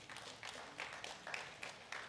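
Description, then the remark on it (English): A brief patter of light, polite golf-clap applause: soft, scattered hand claps from a small number of people, quiet and uneven in rhythm, with no voices over it. “A little golf clap was cute.”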